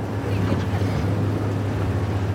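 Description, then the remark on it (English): The engine hastily bolted onto the back of a makeshift boat, a boat cut in half, drones steadily and loudly, a low rumbling hum with a constant pitch, over rushing wind and water noise as it crosses the Tigris River from Iraq to Syria against a strong current. “After a trip of maybe only 50 metres, the driver revs the engine and slides the boat up a pebbly bank.”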